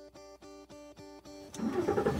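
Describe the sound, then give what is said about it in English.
A car engine cranks with about six rhythmic, whirring starter pulses, then catches and roars to life with a louder, rumbling rev, with no voices; the car is driving from El Paso into Mexico. “Driving into Mexico from El Paso is straightforward.”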